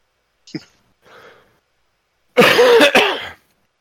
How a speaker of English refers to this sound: sorry about coughing on the mic. I should have muted.